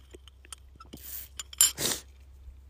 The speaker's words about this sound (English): Hold on, let me take a sip of my coffee.